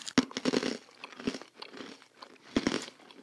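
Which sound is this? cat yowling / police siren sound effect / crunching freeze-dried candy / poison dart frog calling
crunching freeze-dried candy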